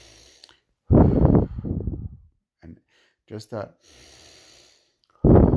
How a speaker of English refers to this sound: So when you're breathing, and like I said in today's John's Daily Bites, when you breathe, the proper way of breathing is in through the nose and out through the mouth. So just try to match your steps with your breathing patterns, just regularly.